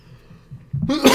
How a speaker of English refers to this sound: Bless you.